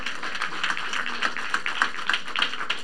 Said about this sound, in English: Amen. Amen. Come on and clap if you believe it.